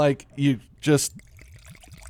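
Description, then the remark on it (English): A few short vocal sounds, then wine glugs softly into a glass in a quick, steady series of rising gurgles, quiet. “I'll pour it in mine first.”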